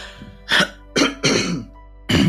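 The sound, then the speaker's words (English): Four rough, noisy throat-clearing bursts, fairly loud, the middle two nearly back to back, with short quiet pauses between them and no talking. “Let me clear my throat.”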